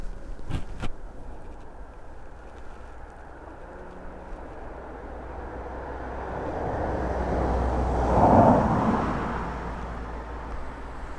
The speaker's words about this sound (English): And there's a car coming along this road now, so I'm just going to hide my